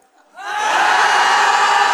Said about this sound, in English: He said, just shout. And so they shouted, ah! Do that.